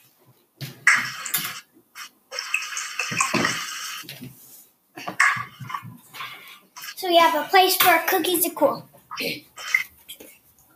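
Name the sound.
washing dishes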